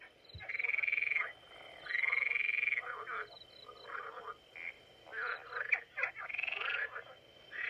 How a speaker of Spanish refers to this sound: Ay, ¿y esas ranas? ¿De dónde vinieron las ranas?